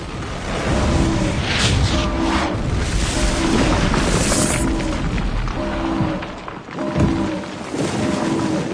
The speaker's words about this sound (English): The explosion of the hyperdrive pods blew up half the pursuing Borgen vessels. It destroyed their propulsion and all their energy weapons.